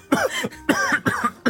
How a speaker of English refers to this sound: PA comes over, sprays my face with water to make me look sick, yeah. And then also sprays like a light pepper spray in my mouth so that I am coughing uncontrollably.